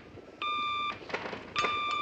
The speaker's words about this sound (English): What's that beeping? I'll take it, sir.